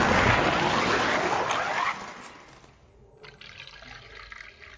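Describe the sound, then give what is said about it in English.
Liquor pours into a cup in a loud, splashy rush for about two seconds, then tapers into a quieter trickle and faint dribbles, with no talking. “I hope they can hear me pouring more booze into my cup.”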